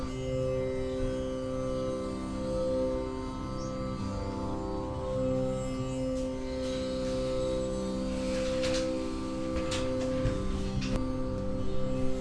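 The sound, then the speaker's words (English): A tambura, a drone instrument playing as background music, hums steadily throughout, its low sustained pitch layered with buzzing, shimmering overtones that swell and fade in gentle waves. There is no speech, only the continuous resonant drone. “And we're just starting by focusing on the sound of the music, the background music, which is a drone instrument called the tambura.”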